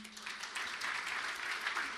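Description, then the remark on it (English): A crowd claps steadily for a pianist invited to come up and join the speaker, a dense wash of many hands applauding together at moderate volume, sustained without pause from start to finish. “Just a little round of applause”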